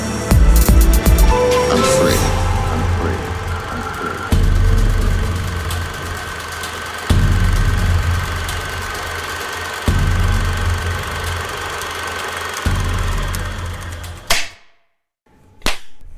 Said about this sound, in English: Sound like a wet fart. A wet fart. Yeah. I don't know. I thought it kind of sounded like engine exhaust.